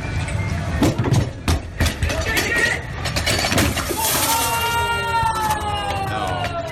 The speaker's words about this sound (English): But she loses her balance, drops the barbell, and it takes off and rolls right through the front glass door of the gym.